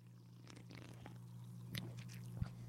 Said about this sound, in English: Smells like cola and mouthwash. First sip, go.